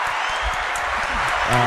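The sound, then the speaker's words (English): A canned applause sound effect played from a preset-sound button, a burst of dense and steady clapping that fills the whole clip at a fairly loud level, with a voice starting to come in right at the end. “Give yourself some applause. There you go.”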